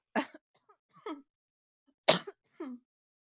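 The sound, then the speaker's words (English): Two sharp coughs about two seconds apart, each trailed by a brief raspy, throaty catch, with no talking in between. “I have this weird cough right now.”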